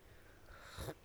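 A single short, airy slurp of coffee close to the microphone, a quick noisy sip that rises and cuts off near the end against a faint, quiet background.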